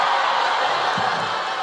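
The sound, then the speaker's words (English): A live audience applauds and cheers in a steady, dense wash of clapping that holds at an even loudness throughout, with no voices standing out above it. “Step on my applause.”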